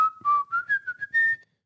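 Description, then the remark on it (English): A person tries to whistle the Steamboat Willie tune, a brief, jaunty run of short notes climbing in pitch before a final held note, with no talking. “I don't know how to do the Steamboat Willie whistle.”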